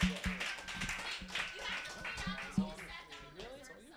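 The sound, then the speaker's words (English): A crowd claps for the players still in a game, in a dense, steady patter, with a few sharper thumps mixed in and excited voices calling out over the applause. “Give it up for all these guys that are still in this. Clap it up for them.”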